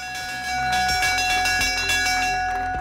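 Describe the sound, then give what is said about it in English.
The Lord's Bell at Lord's rings before cricket begins: a large bell ringing repeatedly in quick, steady strokes, its bright metallic tones sustaining and overlapping into a continuous shimmering peal, loud, with no voices. “Well, that's the sound that says cricket is about to begin. The Lord's Bell, Yozza.”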